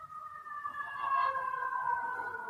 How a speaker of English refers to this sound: Okay. So I hear a siren in the background.